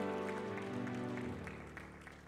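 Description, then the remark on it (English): An audience claps together in praise of the Lord as they take their seats, a dense, steady burst of applause over sustained musical chords, the clapping easing slightly toward the end. “Let's give the Lord a hand clap of praise as we take our seats.”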